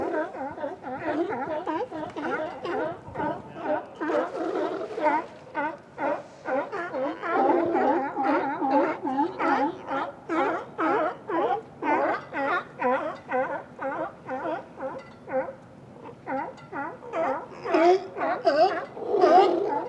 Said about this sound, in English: Okay, and then here in a second we're gonna actually go to just above the water because I got some good fighting sounds. They kind of jockey for position on the dock here. So yeah, we'll check that out for a minute. Got some good growling going.